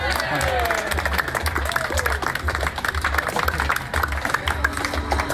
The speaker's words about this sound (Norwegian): Det var jo applaus da. Ja, det var applaus.